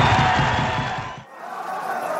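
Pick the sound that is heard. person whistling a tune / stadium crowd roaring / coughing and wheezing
stadium crowd roaring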